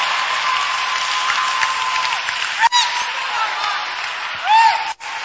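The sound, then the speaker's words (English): A crowd claps steadily in a dense, continuous patter of many hands during church preaching, with voices calling out faintly over it and a couple of brief dips near the end. “That sometimes you feel like, wow, you feel like clapping your hands.”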